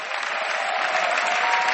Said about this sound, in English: Clap your hands for Jesus. Somebody is coming, keep clapping. Clap and clap and clap.